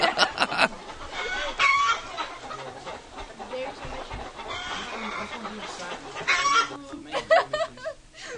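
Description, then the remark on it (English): A chicken clucking sound effect: chickens cluck in a busy, overlapping chorus, with sharp repeated clucks bursting out at the start and again near the end, fairly loud over a steady background. “you're scaring me with the whole chicken side effects.”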